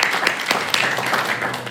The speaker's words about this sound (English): If we can get a round of applause for Crossroads Community Baptist Church, we really appreciate anybody coming and helping us out.